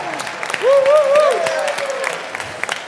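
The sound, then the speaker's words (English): A crowd in a bar claps steadily in a dense, crackling round of applause, with a rising-and-falling whooping cheer rising above it partway through before the clapping carries on. “So, firstly, a round of applause, woo! Please.”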